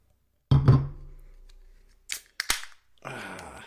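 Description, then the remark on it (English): A sharp knock and clinks as a bottle of Big Stoner IPA is opened, then the beer pouring into a big tulip glass with a steady, fizzy foaming hiss. No one speaks. “So I'm going to open this and I'm going to pour it into my big ass tulip glass here.”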